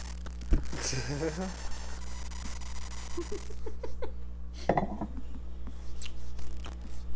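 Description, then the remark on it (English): A sip of mulled wine: a soft clink, a brief airy slurp, then quiet mouth clicks and a swallow against a low steady hum. “Hang on, let me sip my mulled wine.”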